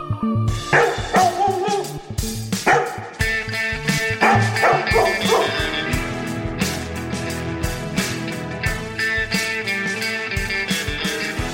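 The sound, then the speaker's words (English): Several dogs bark in loud, quick bursts during the first few seconds, layered over a busy, energetic music track that carries on alone once the barking stops. “Release the hounds.”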